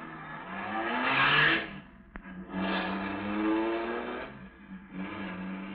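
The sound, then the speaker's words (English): A big car engine roars and revs up loudly as the car is driven down a driveway, pitch rising as it accelerates, briefly drops, then surges again in a sustained roar with no voices. “At the moment that she's sending the big car roaring down the driveway”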